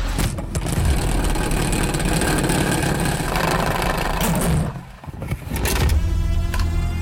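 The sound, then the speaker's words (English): A salad spinner whirs loudly with a steady rattling hum, stops briefly toward the end, then spins up again. There is no talking. “All right, it's time to crank up the salad spinner.”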